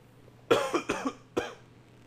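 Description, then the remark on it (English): A loud cough bursts out in a quick raspy cluster of three or four hacks, then a short pause before one final cough; no talking. “Oh my God, I got to cough again.”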